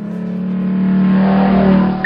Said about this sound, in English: God damn it, boy, are you stupid? Don't redline the engine. This car's barely broke in yet. You don't know how she'll handle it.